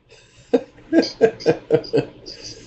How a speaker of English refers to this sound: Yeah, but she ain't even smoking right now. That's hilarious. She just coughing. She said, we both got colds, man.